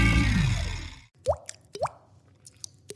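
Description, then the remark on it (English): A voice imitates water drops with the mouth: three hollow, rising plops spaced apart, clear, following a short burst of breathy noise at the start. “I just made a water drop sign on my grill.”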